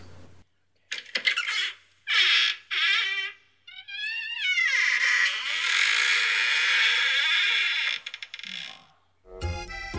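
An old door creaks open in a series of squeaky, wavering groans that stretch into a long, grinding creak, ending with a short, dull knock. It is fairly loud, with no talking.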